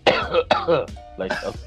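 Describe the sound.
A voice imitates a heavy, harsh cough from choking on soda in a movie theater: two strong, raspy bursts in quick succession, then a shorter rough hack, loud with no other sounds.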